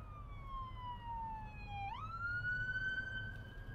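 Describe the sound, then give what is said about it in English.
A police car siren wails steadily, its tone gliding slowly downward before sweeping back up, heard clearly over a low, constant rumble of road traffic in a traffic jam, with no one speaking. “Oh, here comes the popo.”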